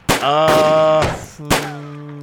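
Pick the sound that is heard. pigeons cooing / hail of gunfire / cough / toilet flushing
hail of gunfire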